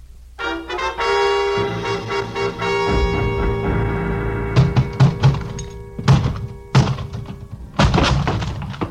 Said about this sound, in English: The lock on the closet door gave up before I did, but only because it was older by several years.